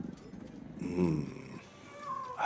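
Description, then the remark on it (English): People mimic a cat's purr with low, rolling throaty rumbles, swelling and fading over a couple of seconds before a brief higher vocal sound at the end. “Stop your purring.”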